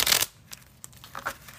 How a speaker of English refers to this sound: Can y'all hear me shuffling the cards?